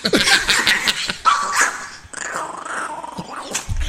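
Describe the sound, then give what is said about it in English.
Two dogs, a chihuahua and a pit bull, snarl, growl and bark at each other in a loud, continuous scuffle, with no one speaking. “You ever see a pit bull fight a chihuahua?”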